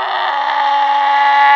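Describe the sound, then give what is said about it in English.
A single long bleat from a mountain goat from Switzerland, loud and nasal, held at a steady pitch for over a second with no one talking. “They're mountain goats, and they know how to yodel.”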